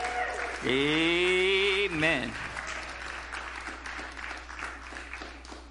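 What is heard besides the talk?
audience hand clapping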